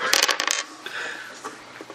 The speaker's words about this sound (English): 2 shots, you're rolling at 5 dice. Remember, your target number is 10. All you have to do is roll 2s.